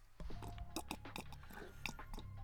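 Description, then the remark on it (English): Someone takes a sip of a drink, with a run of short, wet mouth and slurping noises over a steady low hum, no talking. “Hang on, let me get that sips in.”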